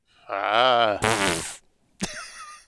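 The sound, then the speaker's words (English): A drawn-out, buzzy fart noise that seems made with the mouth rather than real, sputtering into a breathy hiss before a short click and a brief tonal blip. “Ah, Farts McGee.”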